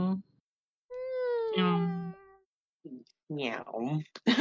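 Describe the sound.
A single drawn-out cat meow, fairly loud, with a steady, slightly falling pitch, followed after a short pause by someone talking.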